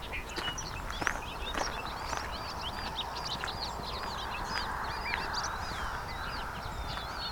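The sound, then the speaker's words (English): Bright, bubbling bobolink song pours out in rapid, tumbling bursts from several very active bobolinks at once, layered over a steady wash of outdoor noise in an open field along a hydro corridor near Westover, Ontario. “So some very active bobolinks here.”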